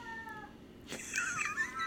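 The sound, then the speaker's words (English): A cat named Max lets out a short meow, then breaks into a longer, wavering yowl, not loud, with no one talking. “But now, as soon as the microphone comes out, he's howling.”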